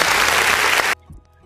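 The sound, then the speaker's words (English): A crowd applauds loudly, a dense wash of many hands clapping for about a second before cutting off abruptly into quiet, with a faint low murmur afterward. “That gets a clap.”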